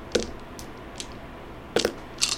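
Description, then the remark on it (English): A player rolls a whole handful of dice, which clatter onto a table in a few short bursts of sharp clicks and rattles, spaced unevenly over a couple of seconds. The sound is fairly quiet, and no one speaks. “I'm gonna roll all these dice.”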